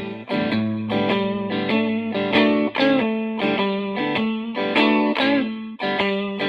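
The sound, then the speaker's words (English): A distorted electric guitar plays a bouncing shuffle riff, repeating chordal stabs in a swung, loping rhythm at steady volume, with no voices. “So when we hear this kind of shuffle, that's what makes us nod our head.”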